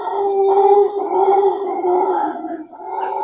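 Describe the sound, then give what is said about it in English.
Many monkeys calling loudly outside, a sustained droning howl that swells and wavers continuously for several seconds with no pause and no talking. “There are so many monkeys right now.”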